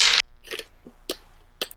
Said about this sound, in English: Okay, so we're going to... both roll 3 dice.